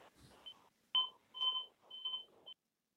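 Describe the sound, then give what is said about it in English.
A clock beeps repeatedly, four or five short, steady high-pitched tones about half a second apart, with soft background noise and no talking. “Who's that beeping?”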